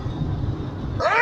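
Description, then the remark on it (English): A single short, voiced sneeze bursts out near the end, following a stretch of low, steady background rumble. “Bless you.”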